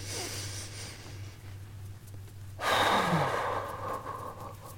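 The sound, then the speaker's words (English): A slow, deep breath drawn in and then released in a long, audible exhale, alone over a low steady hum. “Breathing a bit.”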